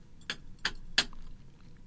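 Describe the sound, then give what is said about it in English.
A small bell is struck three times in quick, even succession, each hit a bright metallic ping with a short ring that fades fast. No one speaks. “Hit it. Hit the bell.”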